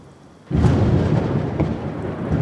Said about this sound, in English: Do you hear that? That's not just the sound of an oncoming storm, but the end of the world.